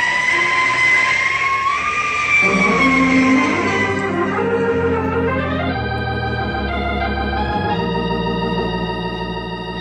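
A fire engine drives by, its wailing siren rising and holding over a heavy, steady engine rumble, loud and continuous the whole time, with no voices.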